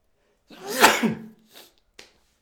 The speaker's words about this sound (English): I'm going to sneeze. Oh, God.